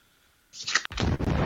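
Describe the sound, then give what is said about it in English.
A cartoonish bomb explosion in a card-matching game when a bomb card is uncovered: a short hissing fuse-like burst, a split-second pause, then a loud, full-bodied blast that roars on without fading, alone with no talking. “That's the bomb.”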